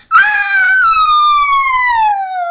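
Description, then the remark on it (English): Dogs howl in a long, loud, sustained note that rises briefly, then slides steadily downward in pitch over a couple of seconds, with no talking. “That's them howling.”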